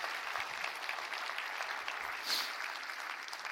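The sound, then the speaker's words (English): A church audience in Austin claps hands on a Wednesday night in a steady, dense wash of applause, bright and sustained at moderate loudness for the whole stretch, with a slightly louder swell partway through. “Come on, let's clap our hands and say, I am blessed.”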